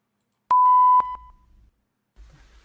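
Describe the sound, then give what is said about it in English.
A loud, steady electronic beep sounds for half a second, then echoes back in a few quick, fading repeats over a low, muffled line rumble, with no voices. “Why is this echoing?”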